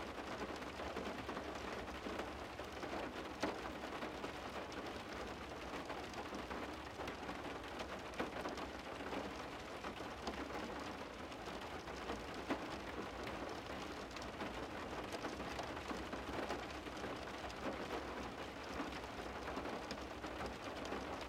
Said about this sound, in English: Today is November 22nd, 2020 at 3 p.m. exactly. I give like a 10 seconds of just listening to the rain.